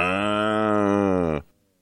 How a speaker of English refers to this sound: Cow in the studio. it did sound like … was broadcasting a farm there, from a farm there, didn't it?